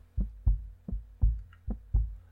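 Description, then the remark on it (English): A steady heartbeat heard in the silence of the Tonto Trail thumps low and muffled, about six beats in quick, even succession, fairly loud against an otherwise quiet background with no voices. “I love the silence on the Tonto Trail when I can hear my heartbeat.”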